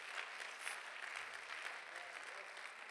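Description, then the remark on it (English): An audience in the house of God claps hands to thank God, in a steady, dense wash of applause, many overlapping claps blending into a bright continuous patter that holds at an even level throughout. “I wish somebody would clap your hands and thank God for the direction of an almighty God.”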